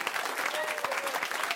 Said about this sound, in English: Thank you so much. Please give a round of applause to Robert Kirkman.